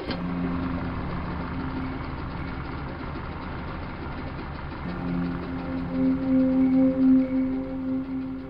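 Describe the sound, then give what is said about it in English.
An outboard motor rumbles steadily with a low, droning hum that swells and grows louder partway through, its pitch wavering slightly as it runs on with no voices. “Deep in the Everglades, graveyard for secrets and sins, an outboard motor rumbles a funeral dirge late into the night.”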